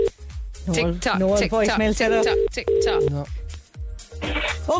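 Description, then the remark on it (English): The ringing tone of a phone call dialed on air on Red FM radio sounds in steady, flat bursts while several people talk and laugh loudly over it, the tone partly buried beneath the voices. “It's your phone. No. It's going to go to voice machine now, isn't it?”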